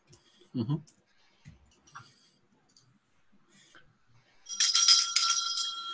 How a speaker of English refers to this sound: There's a bell above the door.